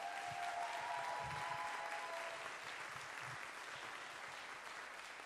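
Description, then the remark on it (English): A church crowd claps steadily for two people invited up to the platform, a dense wash of many hands applauding at even loudness for several seconds, with a faint murmur of voices mixed in. “Will you give them a hand clap?”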